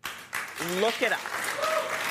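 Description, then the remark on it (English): An audience claps steadily in a dense, sustained burst of applause, with a voice briefly rising above the noise of the crowd. “The fact that the crowd applauded that says a lot.”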